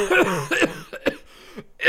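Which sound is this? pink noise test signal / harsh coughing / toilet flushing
harsh coughing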